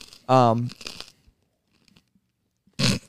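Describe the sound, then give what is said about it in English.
Crunchy bites of a dry, cardboard-like gluten-free snack that has been sitting out for an hour and a half come in a couple of loud bursts with a pause between as a man chews loudly. A short voiced sound comes just before the first crunch. “I don't know how his is so much louder when he chews him.”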